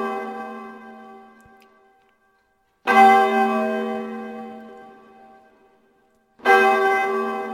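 A deep bell tolls slowly, each strike ringing out with rich overtones and a long fading hum; one stroke decays at the start, then two more land about three and a half seconds apart.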